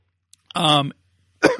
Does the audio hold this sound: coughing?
yes